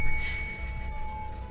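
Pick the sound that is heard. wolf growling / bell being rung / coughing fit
bell being rung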